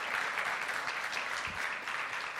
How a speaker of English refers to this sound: You guys, give them a round of applause.